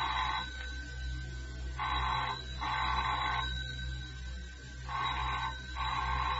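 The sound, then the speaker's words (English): A telephone rings in repeated double bursts, each pair separated by a short pause. The ringing is steady, with a low background hum and no one speaking. “I'll get that. You don't have to answer the phones or the front door, ever.”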